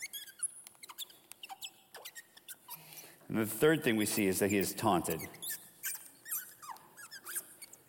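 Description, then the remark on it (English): A marker squeaks repeatedly against a whiteboard as a man writes, in short, high-pitched chirps, clear, stopping briefly while he speaks and then resuming in quick, irregular strokes. “Wow, that is very squeaky.”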